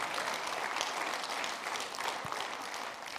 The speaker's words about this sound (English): These are some of the, there's lots and lots. Give them applause. It's great.